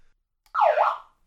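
A brief electronic alarm blares once, its tone dipping and then rising in a quick wail, loud, with silence around it and no voices.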